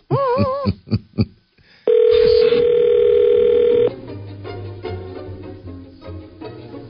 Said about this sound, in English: Oh, no, the phones are ringing. Hallelujah!